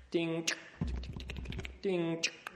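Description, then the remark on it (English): A voice mimics a typewriter: a short vocalized tone, then a quick, steady run of sharp mouth clicks like keys striking, closing with another voiced tone, all clear. “And what else? Typewriters.”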